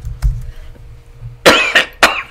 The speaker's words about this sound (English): Excuse me, I'm really sorry. I still do have a very bad cough and so forth, but I'm tired of not recording.